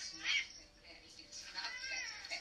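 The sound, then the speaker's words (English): A cat dressed up for a staged wedding meows unhappily in drawn-out, wavering cries, loud, with a sharp yowl near the start and a longer complaining wail that trails on. “after me asking Vina very passionately not to dress her cat up again, she thought it was okay to stage a wedding. And he is hating life.”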